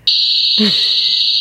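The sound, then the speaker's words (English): A crude cricket sound effect: one shrill, high-pitched electronic tone held steady and loud the whole time, with a brief low vocal murmur just past the midpoint. “That was a crappy cricket.”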